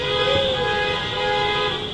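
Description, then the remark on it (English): A caravan of cars on 18th Street honks their horns together on a Monday evening in a steady, overlapping chorus, loud and sustained over a rumble of street traffic with no talking. “On a recent Monday evening, a caravan of cars took over 18th Street for a couple of blocks, honking their horns to express opposition to the designation.”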